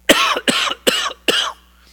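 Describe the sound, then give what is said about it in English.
A harsh, hacking cough repeats four times in quick, evenly spaced loud bursts, with brief silence between each and no talking. “Everybody would be sitting looking at you and saying, you have a terrible cough.”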